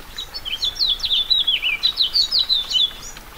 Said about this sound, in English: A light April rain falls in the Anza Borrego Desert in southeast California.